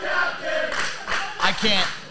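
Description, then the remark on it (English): A GTW wrestling crowd jeering and shouting at a wrestler during a match, a dense wash of many voices with louder swells of booing and yelling rising and falling over about two seconds. “I can't with this crowd right now.”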